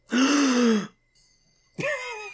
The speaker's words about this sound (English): That was a big gasp.